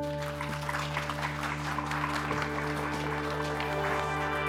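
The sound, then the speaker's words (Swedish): An audience applauds steadily at the end of a seminar, a dense, even patter of many hands clapping at a moderate level over a faint constant electrical hum, with no voices. “Tack till alla i publiken. Jag slutar med en applåd.”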